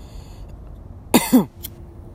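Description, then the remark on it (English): Two harsh, rasping coughs in quick succession after inhaling smoke, loud against a low background hum, followed by a brief faint catch of breath. “Yo, this is the most I've coughed in a minute, man.”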